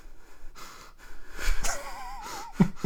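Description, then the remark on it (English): Heavy, wheezy breathing through the nose of a female with nose problems, fairly loud, with a whistling, wavering tone on some breaths and a snuffly snort near the end; no one speaks. “It'd just be like lots of breathing.”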